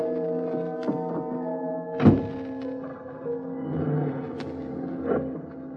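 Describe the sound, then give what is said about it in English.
A solid car door thunks shut against the steady hum of an idling engine, which keeps droning as the car starts to pull away from the curb. A few softer knocks and rattles follow; no one speaks. “I got into my car.”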